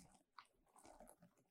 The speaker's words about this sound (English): Why is your beard so loud? You sound crunchy as fuck. Sound like a bag of Cheetos over there. Oh, the man. Put some oil on that shit.